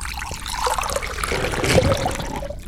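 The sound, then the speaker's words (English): A thick protein liquid glugs and trickles steadily as all of it is poured into a narrow tube, with continuous gurgling that lasts a few seconds without any talking. “Pour it in this tube here.”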